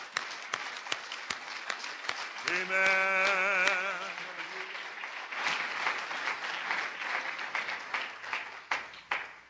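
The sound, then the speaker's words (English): A seated church audience claps loudly and steadily to the Lord for several seconds, a dense patter of overlapping hand claps. A brief sustained musical tone, like an organ note, rises over the applause early on. “Why don't you clap your hands real loud to the Lord as you're seated.”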